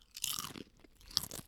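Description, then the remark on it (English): Crisp crunching of salt and vinegar potato chips being bitten and chewed, a few sharp brittle snaps in quick succession with no talking. “Are we ready to crunch? Let's crunch.”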